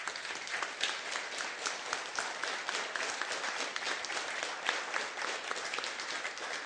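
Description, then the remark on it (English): A room full of people applauding steadily, a dense wash of many hands clapping at once, sustained and fairly loud for several seconds with no voices standing out. “Let's give him a hand.”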